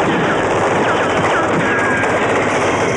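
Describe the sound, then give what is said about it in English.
Loud, sustained gunfire with rapid bursts blurring into a dense, crackling roar that barely lets up for the full three seconds. “People in this town don't go around using each other for target practice.”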